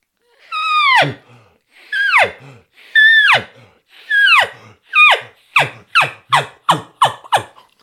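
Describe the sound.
An elk call blown on a diaphragm reed without a bugle tube, using a technique a hunter describes: about ten loud, squealing notes that slide downward into raspy, heavy inhales, spaced at first, then coming faster and shorter toward the end.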